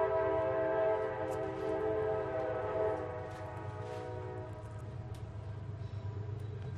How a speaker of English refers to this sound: We've got trains doing a duet in the back.